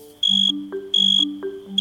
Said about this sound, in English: Male crickets can use their songs to attract a lady cricket or to tell other male crickets to back off.